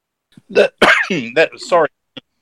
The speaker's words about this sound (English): I just had a little bit of a coughing fit there.